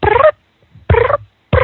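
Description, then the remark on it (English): A person imitates a mother cat's cooing call to get kittens to come, making three short, trilling coos separated by brief pauses, with no other talk. “And everybody out there, practice your little cooing sound and see if you can get that.”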